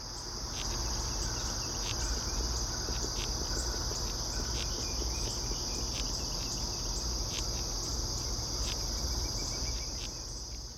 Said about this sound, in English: This is the larva of a cerambycid beetle, chewing away at the wood underneath the bark.